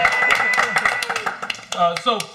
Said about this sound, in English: And we're going to clap just because. Yeah.